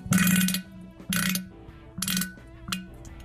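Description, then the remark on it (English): Flatulent bowel movement into a toilet after an enema, recorded with a mic positioned at the toilet: four loud, buzzy, sputtering bursts of gas, each with a low rattling drone and a hissy edge, separated by brief pauses. No one speaks. “thank you for recording your bowel movement for me”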